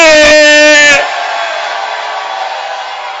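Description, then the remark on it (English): A church audience shouts its loudest at a preacher's call during a sermon, a sharp burst of massed, strained voices that settles into a sustained, slightly fading roar of many people yelling together. “Let me hear you shout your loudest.”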